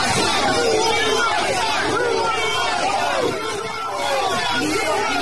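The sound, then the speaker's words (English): Dense crowd noise fills the whole stretch: many overlapping voices in loud, indistinct chatter, steady throughout with a brief slight dip near the middle, no single voice standing out. “Okay, so a lot of crowd noise there.”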